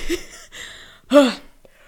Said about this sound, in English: I think the bottom half of that burp just became two different yawns. Ew.